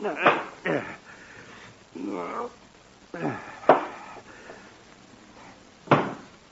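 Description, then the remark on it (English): A book is knocked off a bedside night table and hits the floor with several dull thuds spaced out over a few seconds, with faint voice-like murmurs between them. “I knocked a book off the night table.”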